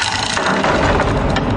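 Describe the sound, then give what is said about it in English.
A heavy, old-style new door from Medieval Installers creaks open in one long, loud, grinding groan with a rough, ratcheting texture that holds steady for about a second and a half, with no talking over it. “Ah, my new door from Medieval Installers finally came.”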